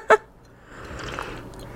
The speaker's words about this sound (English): I need to have a sip of my coffee before I lose my mind.